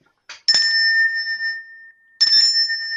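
A small bell rings three times: two quick strikes close together, a bright tone ringing on and fading, then a pause before a third ring. Clear, with no voices.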